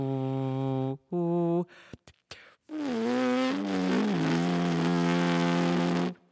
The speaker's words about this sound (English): But the other part is me growling or speaking in my throat. And that sound also passes through the horn, but it's a different pitch. Can we hear that sound without a horn at your lips? Yeah, so this is the plain buzzing. And this is me humming.